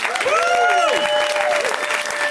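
A crowd claps steadily and densely throughout, with a few high, sliding whoops or cheers rising over the applause near the start.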